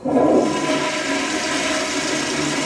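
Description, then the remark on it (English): A toilet flushes, starting with a sudden loud gush and settling into a steady, churning rush of water that fills the whole clip with no voices. “I've recorded the sound of a toilet flushing for a story about wastewater testing, chanting outside of protests, illegal logging in the Amazon rainforest.”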